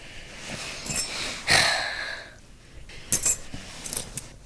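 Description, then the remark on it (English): A set of apartment keys jingles in several short metallic bursts as a mother and son pass them back and forth, with brief quiet gaps between the shakes and rustles. No one speaks. “They pass the keys back and forth for a moment, and Stephen holds them up in the air before clutching them in his fist.”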